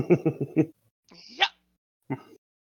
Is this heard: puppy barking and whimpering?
yes